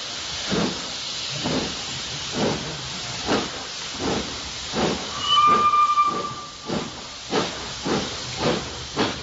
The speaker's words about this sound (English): It's actually more like a locomotive.